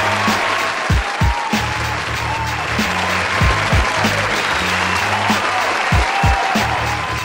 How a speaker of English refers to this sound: What an amazing performance that is. Should we give a clap or a hand of applause for this artist, man? They deserve it.